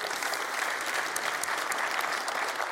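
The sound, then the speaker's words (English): An audience breaks into sustained applause for a person who found life in Jesus and was saved in that room the week before, a dense, steady patter of many hands clapping at an even loudness with no voices rising above it. “That's worth applauding.”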